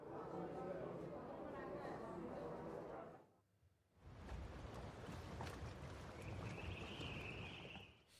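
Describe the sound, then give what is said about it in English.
Sailing-boat-on-water ambience with steady washing noise and indistinct voices chattering in the background; the sound briefly drops away midway, then returns with a thin high whistle near the end. “Maybe I reckon that's sailing.”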